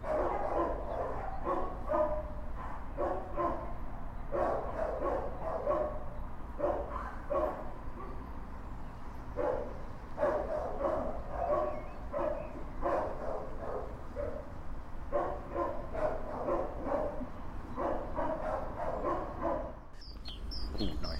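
Many dogs bark continuously, overlapping one another in a busy, echoing chorus with frequent sharp yips, as if in a large kennel room, with a steady background hum underneath.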